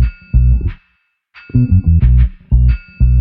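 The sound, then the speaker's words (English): A loud electronic beat with a heavy, pulsing synth bass line and bright synthesizer tones, punctuated by sharp, metallic ching hits that recur throughout, with a brief gap near the start. “And so it has this bass line and there's like some synthesizers. And then there's like this super loud, like ching sound that's going through the entire track.”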